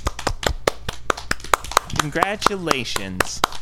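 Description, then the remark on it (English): Several people clap in a quick, uneven patter of sharp hand claps that run throughout, while a voice talks over the middle stretch. “We gotta stop clapping.”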